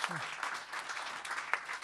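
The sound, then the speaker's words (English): An audience at a comedy panel show applauding an announced result: dense, steady crackle of many hands clapping at an even level throughout, with a brief low vocal sound at the very start. “Thought you were being weird then, clapping the result, and then I remembered I'm supposed to be introducing the panel.”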